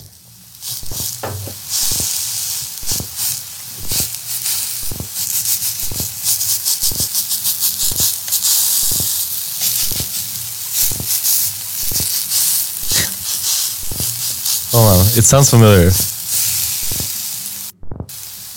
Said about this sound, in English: It sounds just like the guys fucking frying some hot dogs.